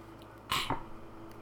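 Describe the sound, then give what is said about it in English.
A single harsh cough after sipping whiskey bursts out in two quick, rasping pulses, then fades back to a quiet hum with no talking. “I'm sipping on some whiskey. Yeah, that's like what leaving, that horrible cough was about.”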